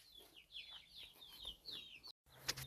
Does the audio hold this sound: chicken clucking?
yes